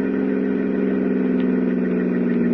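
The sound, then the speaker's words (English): A car engine hums steadily at a low, even pitch as the driver slows the car, continuous throughout, with a faint whirring layer above the drone and no voices. “I slowed the car as I planned all my moves.”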